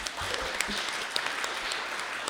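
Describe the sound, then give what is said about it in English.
An audience at Creekside applauding steadily for a couple's announced wedding, a dense wash of many hands clapping at once with a few sharper claps standing out, sustained throughout at moderate loudness. “And so, you can all clap for that.”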